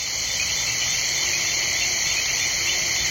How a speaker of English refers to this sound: … recorded this chorus of frogs, insects, hippos, bats, and other creatures of the night for his CD, ….